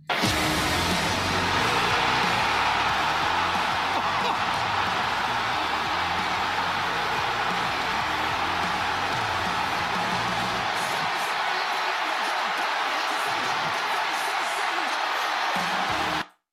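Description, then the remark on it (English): A huge AEW arena crowd roars and cheers for the debut of wrestler Saraya, aka Paige, in a loud, unbroken wall of noise, with scattered whoops rising above the din for the full length before it cuts off abruptly. “The crowd is electric, and that is for Saraya, aka Paige.”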